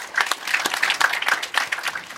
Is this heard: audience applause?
yes